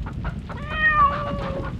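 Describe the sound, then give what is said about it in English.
A single drawn-out kitten meow, a thin high-pitched wavering cry lasting about a second, rising slightly then trailing off over a low background rumble and hiss. “El gatito dice que para sembrar la confusión”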